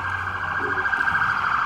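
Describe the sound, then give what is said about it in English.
An ambulance siren sounds outside, a steady, piercing high tone that holds fairly loud throughout with a faint low rumble underneath and no voices. “Yeah, you know that's an ambulance.”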